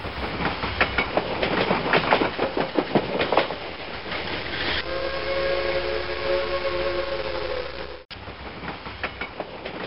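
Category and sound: vehicle, train clattering along rails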